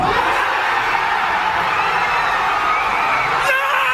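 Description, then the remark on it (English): A huge stadium crowd roars continuously at a steady, loud level after a Cincinnati Bengals fourth-down touchdown against the Ravens, Andy Dalton's pass caught by Tyler Boyd, with scattered shouts and whoops rising out of the dense wash of voices for the full four seconds. “The Cincinnati Bengals have stunned this crowd.”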